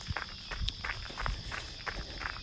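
Quick, steady running footsteps crunch over the loose gravel of an old rail bed right next to a rail yard, with the rails still in place, about two strides per second, with a faint constant high hiss in the background and no talking.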